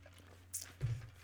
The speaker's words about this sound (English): Hold on, I'm going to pause for a drink here. Because, you know, if Tam was here, you wouldn't know I was taking a drink. But since it's just little me, you know. So here we go. Big gulp. Om nom nom.